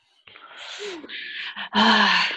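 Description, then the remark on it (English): A man pants heavily, a few loud, breathy gasps with a groaning edge, out of breath, the last exhale the longest and strongest. “And he's panting. He's out of breath at this time.”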